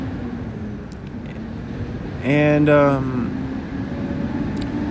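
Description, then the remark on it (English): A loud passing truck's low engine rumble drones steadily in the background throughout, while a person briefly speaks a single word over it partway through. “Oh, there goes the loud truck.”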